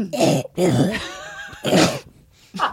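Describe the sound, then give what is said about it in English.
A loud series of harsh coughs and throat-clearing bursts, four or five in quick succession, with a strained, raspy voiced wheeze drawn out between them. “Is that why you have the cough?”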